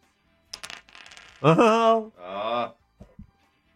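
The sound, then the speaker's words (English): A short rattling clatter of dice tumbling across a hard surface, rolled to set a player's handicap in a quiz game and landing on seven, followed by a couple of drawn-out wordless vocal reactions and a few faint clicks at the end. “We normally set your handicap at 18, but we allow you to roll the dice.”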